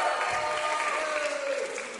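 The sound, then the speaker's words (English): A crowd cheers and claps steadily, on request, after being told that Jesus rose from the grave, a dense wash of applause with raised voices and a sustained whoop rising over it, fairly loud throughout and easing slightly at the end. “Way, big cheer, come on, big cheer.”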